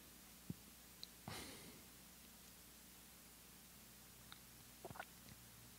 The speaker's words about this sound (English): I see what you mean by this fan making the sound. You can use the sound itself to direct your attention back.